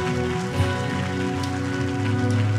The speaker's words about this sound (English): Can you give God a hand clap this morning for his word?